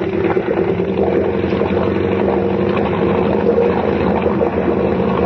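A boat engine roars steadily at high revs, around 2,800 to 3,000 rpm and running a little hot, a loud continuous drone with a throbbing low hum and rushing noise, unbroken throughout with no voices.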